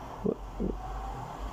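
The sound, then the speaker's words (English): A steady, low rumble of city traffic outside, heard from indoors, fairly quiet and continuous, with two brief mid-pitched bursts near the start. No one speaks. “I'm sorry, there is so much traffic, guys, outside, but that's what to be expected and living in a city.”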